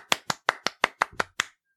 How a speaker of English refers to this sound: I think I just clapped 9 times, actually.